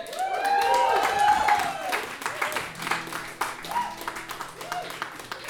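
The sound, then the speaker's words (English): An audience breaks into loud, sustained applause with dense clapping and some cheering, strongest at the start before settling into steady clapping with voices mixed in. “So will you please give a massive round of applause to the one and only”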